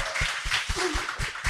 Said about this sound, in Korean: 박수 부탁드려요.